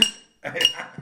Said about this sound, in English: clanking the steak knife on the silverware, glassware.